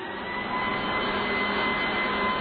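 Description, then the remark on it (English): A leaf blower runs steadily, a continuous loud whooshing roar with a faint high whine on top, holding the same level throughout with no voices. “Number five, a leaf blower.”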